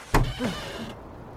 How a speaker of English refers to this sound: And this is me getting out of the car.